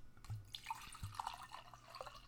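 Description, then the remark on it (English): Wine glugs and trickles into a glass, a soft, uneven pour with little bubbling drips and gurgles, fairly quiet, with no one speaking. “can I have a dash more? Of course. Ready? Pour me my server.”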